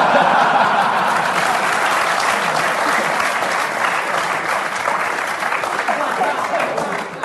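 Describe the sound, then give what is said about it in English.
Sustained audience applause fills the whole stretch, a dense, steady clatter of many hands clapping at once, loud, with no individual claps standing out. “You got a bit of applause there, bloody hell.”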